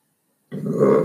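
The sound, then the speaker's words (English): A single loud, guttural burp starts abruptly after a moment of silence and rumbles on for just over half a second, low and raspy, with no talking. “Just burping out the brain and muscle food that I've had today.”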